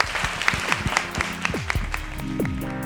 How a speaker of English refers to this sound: And just, yeah, thanks to the Roundhouse and everyone for having us here. Big round of applause.